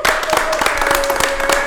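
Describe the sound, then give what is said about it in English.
An audience claps in a steady, dense burst that stays loud throughout, with a thin sustained tone humming underneath the applause, a round of applause for the Cheats Movement family at 804 RVA. “Ladies and gentlemen, let's give them a great big round of applause.”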